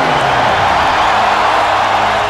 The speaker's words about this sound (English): And listen to this crowd for number 8, Kobe Bryant.